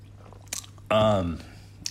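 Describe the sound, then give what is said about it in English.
Mouth sounds of someone sipping water: a short wet slurp, a brief voiced gulp or sigh, then another small wet click, all fairly quiet. “Sorry, I'm going to take a sip of water here.”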